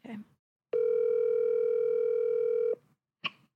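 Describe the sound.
A phone call dialing out on speakerphone: a single loud, steady electronic tone with a buzzy edge holds for about two seconds, framed by short snatches of voice before and after.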